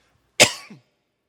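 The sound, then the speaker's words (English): A preacher giving a church sermon lets out a single sharp cough that trails off into a brief throaty rasp, like a quick throat clearing, with silence on either side and no talking. “Okay, I've coughed a few times.”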